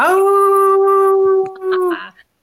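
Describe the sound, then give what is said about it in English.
A person imitates a wolf howl: one long, steady, sustained tone lasting nearly two seconds, loud, rising slightly at the start and trailing off with a brief breathy tail. “Sure. I'll howl for you right now.”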